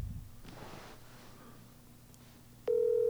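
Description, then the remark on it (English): Faint handling noise and low hum, then near the end a loud, steady electronic ringing tone suddenly starts as a phone call rings out on speakerphone. “Him on speakerphone.”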